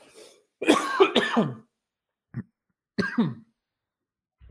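A close, loud coughing fit: a harsh burst of several rapid coughs, a pause, a short single cough, then another raspy pair, with no talking.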